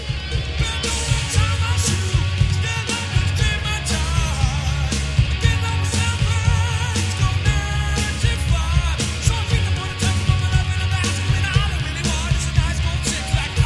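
A loud, dense rock band intro plays steadily for the whole stretch, with thick bass, bright cymbal wash and energetic rock instruments; a few band members shout over the music during the long song intro, before any singing.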